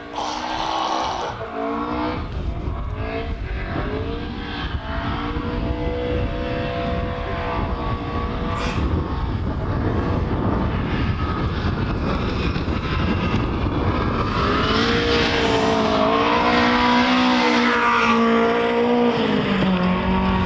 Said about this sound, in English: But this is, I just want you to listen to the engine because the engine's been rebuilt twice. And now, although the clutch was slipping here, listen to the noise. Volume up.